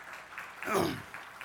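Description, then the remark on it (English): An audience claps softly in a steady, diffuse patter at a service that is being taped, with a brief voiced exclamation sliding down in pitch partway through. “Not too much clapping because they're taping this and they'll think you're clapping because I'm such a good preacher.”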